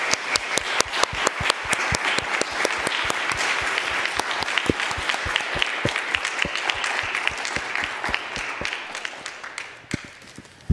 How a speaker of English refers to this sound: So let's give our panelists a round of applause for a great discussion tonight.